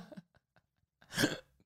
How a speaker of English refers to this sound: oh my God, now a hiccup. What's wrong with me? Do you see that? I like inhaled too much on the laugh.